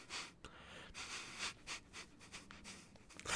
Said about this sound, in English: Oh my god, hey. I'm having an asthma attack.